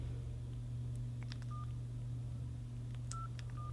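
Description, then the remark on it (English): A few short electronic beep tones of touch-tone dialing on a cell phone, calling a Chinese restaurant, spaced irregularly over a steady low hum, with no talking. “It's not the easiest thing to do on a cell phone, but we'll try it.”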